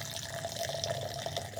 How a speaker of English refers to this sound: This is Tullamore Dew. This is what Tullamore Dew sounds like poured from a foot above a glass.